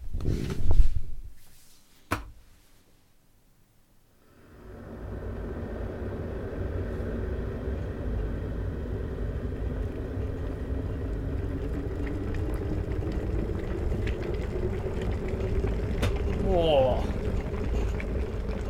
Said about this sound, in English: Subtle sound of a kettle. I like it. I'm a big fan. It's a big sexy noise, that was.